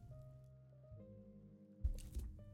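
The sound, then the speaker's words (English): Someone drinking water, with a couple of soft gulping, squishy swallow sounds near the end over a steady low background hum. “Sorry, drinking water.”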